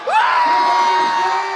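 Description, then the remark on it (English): An audience votes by cheering for 'ketchup is jam': a loud, sustained whoop rises sharply and holds steady over a dense wash of crowd cheering and yelling, filling the whole short burst. “Okay, let's hear it one more time for ketchup is jam.”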